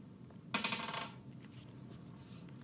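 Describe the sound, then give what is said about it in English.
Dice clatter across a table as they are rolled for initiative in a game, in a quick burst of sharp, bright clicks lasting about half a second. A few faint ticks follow, then one last crisp tap. No one speaks. “All right, so each of you roll initiative for your chair.”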